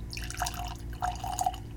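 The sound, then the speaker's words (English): Laphroaig whiskey from a sample bottle pours into a glass with a soft glugging trickle and small dripping splashes, fairly quiet, lasting just under two seconds with no one talking. “So let's go to get that poured.”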